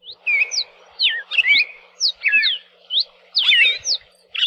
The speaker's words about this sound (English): we can listen to the songs of both the red-crested cardinal and the yellow-billed cardinal. Can you tell the difference?